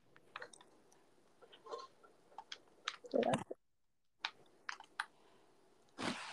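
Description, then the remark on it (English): Quiet crinkling and creasing of ladybug-patterned origami paper being folded, irregular soft crackles and taps, a brief pause midway, then a louder rustling burst at the end. No one speaks. “I got this origami thing, and I'm trying to figure out how the heck what I'm trying to create.”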